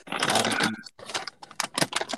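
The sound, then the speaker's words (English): Rapid clicking of computer keyboard keys as someone types up meeting minutes, a dense burst of typing followed by a brief pause and then more scattered keystrokes, moderately loud with no voices. “Are you guys typing? Yeah, sorry, that was me.”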